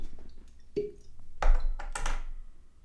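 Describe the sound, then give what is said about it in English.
Whiskey poured into a glass for a whiskey review: a hollow clink of bottle on glass, then two short splashy bursts of liquid, moderately loud, with no talking. “Oh, can you give me just a quick splash of run out?”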